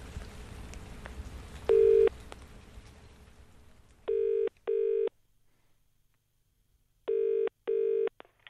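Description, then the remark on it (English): A phone call being placed from RTE Radio 1 to a household listed in the phone book: one short electronic beep over low background hiss, then quiet, followed by two pairs of loud, clean double-ring tones from the line. “I decided to ring all the Carneys in the phone book.”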